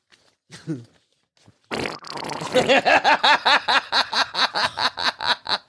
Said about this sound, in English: That one sounds like a wet... It sounds like a shart.